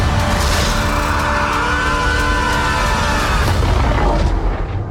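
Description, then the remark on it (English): A loud, roaring hyperlaunch blast-off effect like a spaceship launching, with heavy rumbling and whooshing tones sweeping up and down, holding steady for about five seconds without any talking. “You are clear for hyperlaunch.”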